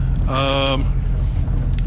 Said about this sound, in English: Yes, we're on the top deck of the bus. Did I say that? I can't remember. Yes, we're on the top deck of the bus.